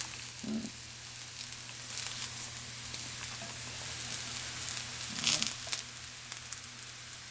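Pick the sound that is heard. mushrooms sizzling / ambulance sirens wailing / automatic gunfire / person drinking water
mushrooms sizzling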